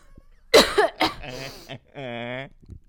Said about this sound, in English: almost just died coughing.